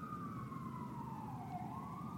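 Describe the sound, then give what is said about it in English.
An emergency vehicle siren wails steadily, its pitch sliding slowly down then rising again, over a dense rumble of city street traffic in New York City. No one speaks. “Now I'm just listening to the siren.”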